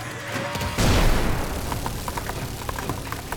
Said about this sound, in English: I raise my cannon and pour fire into the shielded viewport.